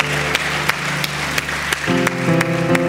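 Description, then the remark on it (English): An audience at a church service applauds five or six individuals who raised their hands, over steady background music, with sharp, regular claps cutting through at a near-even rhythm while organ-like chords sustain and shift beneath. “Can we give these five or six individuals that raised their hand a huge round of applause?”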